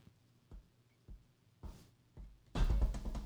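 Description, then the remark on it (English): Four dull, evenly spaced knocks on a door, fairly muffled, followed by a sudden louder burst of rustling, thumping noise. “Hold on. Someone's at the door.”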